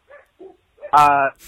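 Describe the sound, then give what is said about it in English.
A dog gives a few short, soft yips, then lets out one loud, drawn-out bark, followed by a brief faint noise. “Oh man, my dog.”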